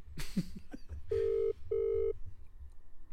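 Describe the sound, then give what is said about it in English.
A phone call rings out: after a moment of faint clicks and handling noise, a steady ringback tone sounds in two short back-to-back bursts, clear, with no talking. “Do you want me to call him? I can call him.”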